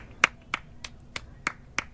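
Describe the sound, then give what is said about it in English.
Priyanka Chopra claps from a balcony over her large empty yard, in appreciation of doctors, nurses and first responders. Six sharp hand claps come in a steady, unhurried rhythm, each a crisp, bright smack with a brief gap of quiet between them, and no voices. “Priyanka Chopra clapped from a balcony at her huge empty yard.”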